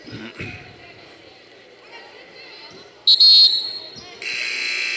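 A single piercing referee whistle blast, shrill and very loud, cuts through the squeak and thump of a basketball game between Sun Valley and Weddington, followed by a swell of crowd noise.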